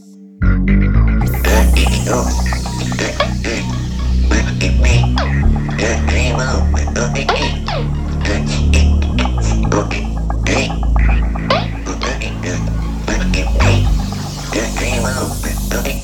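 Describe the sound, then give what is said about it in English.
A person demonstrates frog speech, producing croaking, frog-like vocal sounds, a steady low throbbing hum broken by rapid gulping pulses, continuing loudly and evenly for about fifteen seconds without clear words. “First, you will hear the frog sound, after which the glossopharyngeal sound will be demonstrated.”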